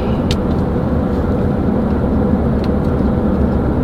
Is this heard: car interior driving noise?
yes